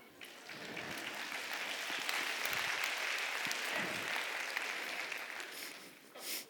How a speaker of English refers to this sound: I hope you're clapping because you disagree with that statement.